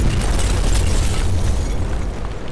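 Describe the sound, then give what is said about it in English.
A loud, deep blast from C4 explosive set in the middle of a pane of glass booms and roars, its low rumble sustained across the whole moment with crackling debris, then slowly fading toward the end. No voices are present. “Set C4 in the middle of the glass.”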